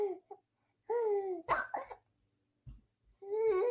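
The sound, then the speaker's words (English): A baby boy babbles and coos in high, sing-song bursts, with a couple of short, abrupt hiccups popping out in the pause between vocalizations. “He's got the hiccups.”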